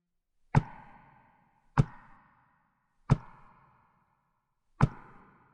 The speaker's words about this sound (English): To verify, Robbie's mother asked one more time for the spirit to knock at least four times if it was indeed Mildred. The spirit did.